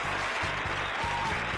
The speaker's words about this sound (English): We welcome you. We welcome you. A little applause action for you guys.